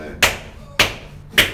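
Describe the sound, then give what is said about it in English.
A hand slaps against a chest three times in a steady rhythm, done for the heart. Each smack is a sharp, fleshy hit that fades quickly, with quiet pauses between. “You got bad heart, you slap it.”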